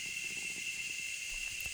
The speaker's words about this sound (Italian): In realtà adesso siamo al tramonto, il tramonto è appena passato, per cui si sentono sia i grilli che le cicale.